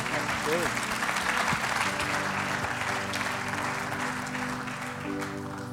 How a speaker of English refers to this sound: Guys, can we give these guys a round of applause?